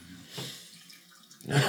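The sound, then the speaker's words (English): Water is poured into apple juice to dilute it, in short splashy bursts, a brief gush early on and a louder, fuller pour at the end, with no talking. “My brother drinks it, and it's too sweet. I got to water it down.”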